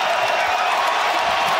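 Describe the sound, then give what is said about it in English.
A basketball arena crowd on its feet roars and cheers in a frenzy as Derrick Rose comes out, a dense, steady wall of noise that stays loud and unbroken the whole time, with no single voice standing out. “Everybody's on their feet cheering.”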